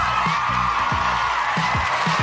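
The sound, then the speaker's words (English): A loud, steady wash of audience applause and cheering for the Icy Robots Radio 5-Mic Movie Hall of Fame, with several whoops that swoop downward in pitch scattered throughout. “Alrighty, tidy whitey, thank you for all the, thanks for all the generous applause.”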